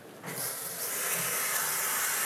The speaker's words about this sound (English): My brain is pretty fried. I'm just like a little overwhelmed. So I'm going to take a cold shower.